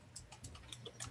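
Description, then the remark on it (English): Quick, irregular clicks of typing on a keyboard as someone writes a message, about eight keystrokes in a short burst, soft with a low hum underneath and no voices. “What are you typing?”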